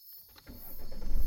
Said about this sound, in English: Is that a car? Where'd he get a car?